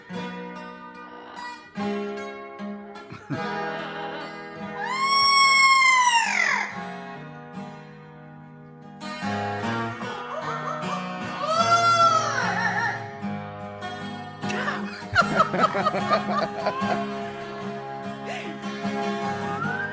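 A parrot sings a rock melody in a raspy, warbling voice, with swooping high notes rising and falling over steady instrumental backing, and no human talking.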